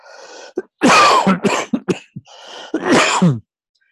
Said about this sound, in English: please excuse me for the cough. It's interesting that I was just mindful of the fact that I turned my face away as though you were actually in front of me, so I didn't cough on you.